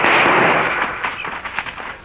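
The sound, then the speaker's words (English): A stagecoach driver fires a burst of gunshots: several sharp, crackling reports in quick, uneven succession over a loud rushing hiss that gradually fades. No one speaks. “One of those bullets hit me in the shoulder.”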